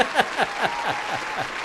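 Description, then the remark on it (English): A short round of applause a person gives themselves: steady, evenly spaced claps, about eight in under two seconds, moderately loud with no voices over them. “I'm giving myself a round of applause for that one.”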